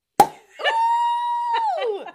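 A single sharp cork pop bursts out of a champagne bottle, close and loud, followed by a long sustained high-pitched vocal whoop that slides downward at the end.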